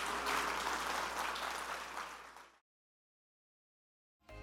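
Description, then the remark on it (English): A church audience at Anchor Church claps its hands to thank the Lord, a dense, steady wash of applause for a couple of seconds, tapering off into silence before a brief burst of sound at the very end. “Oh, would you clap your hands and thank Him for what we feel?”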